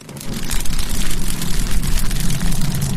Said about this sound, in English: Yep, sounds like a roaring, crackling fire. There's just one thing. It's not fire. Whoa. Nope, it's just a small piece of cellophane wrapping I got from some cookies I bought.